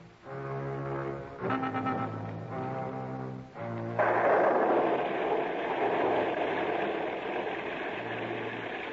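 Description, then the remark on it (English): A few loud, low brassy blasts give way to a sudden, steady roar of wind and heavy rain from a quick, windy, wet thunderstorm coming up out of the Gulf, continuing to the end, with a low horn-like tone returning briefly. “Old Mother Nature suddenly stepped in and gave us a hand with one of the quickest, windiest, wettest thunderstorms that ever came up out of the Gulf.”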